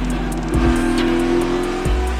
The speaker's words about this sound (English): The flag waves, the green flag at the field comes up to speed, and we are underway.